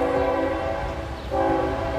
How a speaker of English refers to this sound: Tell that damn train shut up.